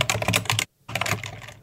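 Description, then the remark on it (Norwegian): Rapid clacking of keys on a mechanical keyboard as someone programs a spinning donut, crisp, in a steady flurry that pauses briefly before resuming. “Han har en sånn kickrun-tastatur, er han ikke det?”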